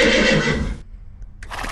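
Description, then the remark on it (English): A voice imitates a horse's neigh, a loud, wavering whinny lasting under a second, followed by a brief pause and then a shorter breathy snort-like burst. “jump on my horse and let's go for a ride.”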